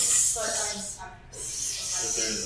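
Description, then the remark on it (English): A voice imitates piles of hissing snakes in a pit: two long, breathy hisses broken by a short pause near the middle, with a faint voiced tone beneath the steady, fairly loud hiss. “So, needless to say, this pile of snakes go over here, and this pile of snakes go over here. They're just like.”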